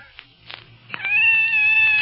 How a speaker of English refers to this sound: It's a cat. Kitty. A cat. Oh, nice kitty. It's scared.